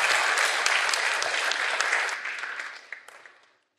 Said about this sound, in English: Can we give them a warm round of applause, folks? Thank you guys very much.